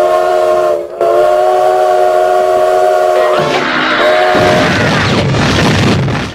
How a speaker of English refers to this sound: Our train just went off the tracks. That's what that is.